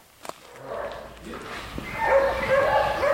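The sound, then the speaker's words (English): Dogs guarding precious Pau Brazil wood stacked outside a bow-making building bark in short, sharp bursts, growing louder and more insistent toward the end, while a voice speaks over the top. “Dogs guard the precious wood stacked outside.”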